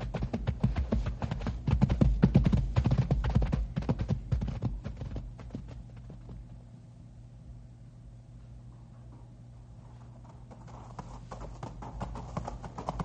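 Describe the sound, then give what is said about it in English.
Horse hooves clip-clop steadily over a dangerous trail of loose rock, loud at first with dense, uneven strikes, then easing into a quieter, sparser rhythm before picking up again near the end. “Trail plenty dangerous here from loose rock. You give horses head.”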